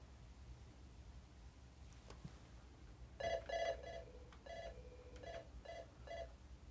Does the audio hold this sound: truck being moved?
no